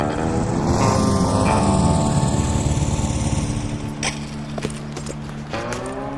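A motorcycle engine pulls up with a loud, buzzing rumble, then eases down to a steadier, lower idle hum, with a few sharp clicks near the end. No one speaks.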